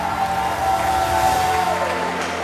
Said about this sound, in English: Thank you for clapping. Thank you for clapping. Thank you for clapping.